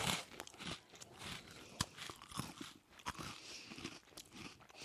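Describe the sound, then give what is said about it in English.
Crunching of a dry pumpkin spice breakfast biscuit being bitten and chewed, with a dense run of sharp, brittle cracks and crumbly grinding over about five seconds, and no talking. “Okay, here we go. Crunchy.”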